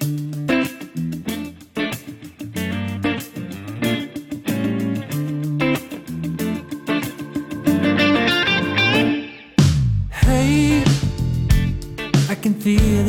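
The intro of a newly released pop single plays with a steady, punchy beat under layered, slightly distorted instruments, then briefly drops out with a falling sweep before the full band crashes back in with a wavering melody.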